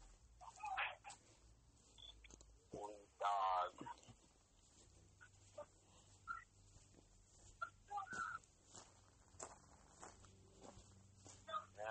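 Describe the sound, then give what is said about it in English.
Steady footsteps crunch along outdoors at a walking pace as a person continues a walk without a dog, while chickens cluck and call intermittently in the background. “I will continue the walk without the dog.”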